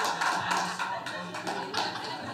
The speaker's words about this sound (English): Do you think I am going to go along with the random claps?